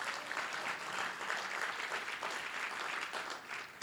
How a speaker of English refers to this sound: Five people are clapping. This is encouraging.